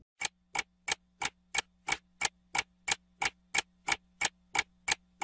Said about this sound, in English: You hear the clock ticking. Tick, tock.